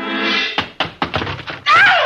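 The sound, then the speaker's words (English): A flurry of heavy, dull punches lands on a man, about five or six quick thumping blows in an uneven rhythm, bracketed by a sustained groaning voice before and after. “I started this thing slugging you, and I might as well finish it the same way.”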